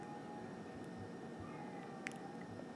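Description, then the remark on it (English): An old neighborhood cat yowls loudly, drawn-out and mournful, barely rising above a steady hiss of background noise, with a brief sharper sound near the end. “Oh my god, my neighbor's cat is being so loud right now.”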